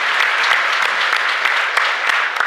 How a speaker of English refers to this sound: Yeah, that deserves a round of applause. Yeah.